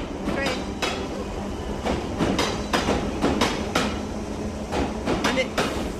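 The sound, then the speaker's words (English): An underground train rumbles steadily along the rails, loud, with sharp metallic clacks from the wheels repeating at irregular intervals over the constant roar. “the driver of that train almost took a heart attack.”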